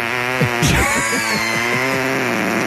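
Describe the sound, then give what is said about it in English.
A voice imitates a slow chicken fart: a continuous buzzy, rasping drone lasting about three seconds, its low pitch wobbling up and down, fairly loud with no talking over it. “Can do it like really, really slow. Chicken fart.”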